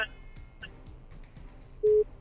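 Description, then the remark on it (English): A radio phone-in call line crackles with faint hiss and muffled noise, then a loud steady busy tone beeps twice as the caller's call drops. “Okay, I think we're having issues with the phone lines, but don't be discouraged, okay?”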